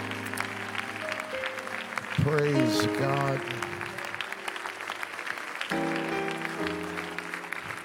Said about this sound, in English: Okay, you clap your hands to the Lord one more time.